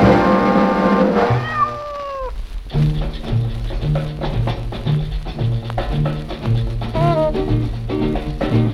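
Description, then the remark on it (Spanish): The cat Panchito Cabrera meows twice, a drawn-out meow early on and a shorter one near the end, both heard over loud, steady rhythmic music, opening the radio show La Noche de los Discos Vivientes on Radio Cómeme from Valparaíso, Chile. “El gato Panchito Cabrera les da la bienvenida a un nuevo episodio de La Noche de los Discos Vivientes”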